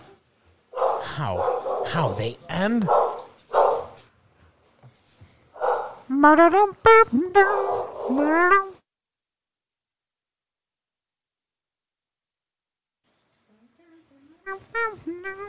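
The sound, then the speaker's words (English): Dogs bark and yip in a quick cluster of sharp calls mixed with people talking, then fall silent before a few more barks break out at the very end. “Yeah, they're still barking.”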